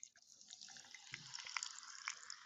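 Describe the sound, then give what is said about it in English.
A steady stream of liquid splashes and trickles into a glass, with small bright drips and gurgles over a few seconds. No one speaks. “And there it is. And here's the pour.”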